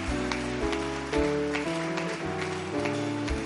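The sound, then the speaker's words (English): A crowd claps along in a steady rhythm over sustained keyboard or organ chords that shift every half second or so, the claps forming a pattering, rain-like layer above the music. “Oh, increase that clap offering.”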